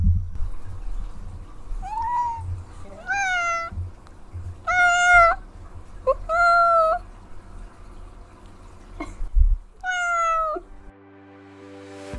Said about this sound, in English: I'm going to share my cousin's sweet kitty cat, Lana, wanting to say goodbye